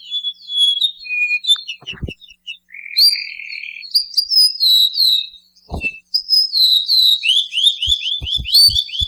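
A male ʻōʻū sings clear, sustained whistled notes, then finishes with a rapid run of short descending notes forming a trill, fairly loud with a few soft low thumps.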